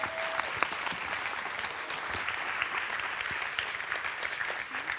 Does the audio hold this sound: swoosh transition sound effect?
no